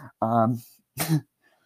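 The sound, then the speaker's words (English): A man coughs twice to clear his throat: a voiced, rumbling first cough, then a sharper, breathier second one about half a second later, followed by quiet. “Did he just cough, like, twice to clear his throat?”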